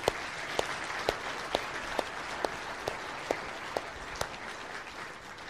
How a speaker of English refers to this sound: Jesus Christ rose from the grave. Why don't you give God a round of applause for that?